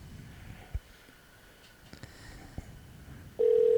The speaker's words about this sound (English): on this keypad here, go ahead and type in your wife's phone number. And then hit the green phone.